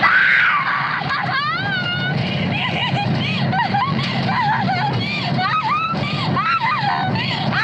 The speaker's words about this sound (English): … is hysterically laughing in the bed of this truck. Covered in blood, screaming and laughing, losing her mind, you might say.